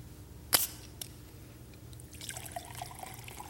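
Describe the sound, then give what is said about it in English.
A sharp click and a faint tap, then Perrier sparkling water is poured into a clean glass with a soft, fizzy trickle that builds over the last second or so. No one speaks. “I'll pour some Perrier in there.”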